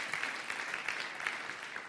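Steady applause from an audience for the speaker's wife fills the whole moment, a dense patter of many hands clapping at once, fairly loud, with no voices over it.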